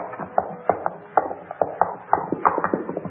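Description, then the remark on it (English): Horses pulling a carriage along a road: hooves clip-clop in a steady, brisk rhythm, each sharp knock clear over a low background rumble, with no voices. “Listen, horses, pull the carriage to the side of the road.”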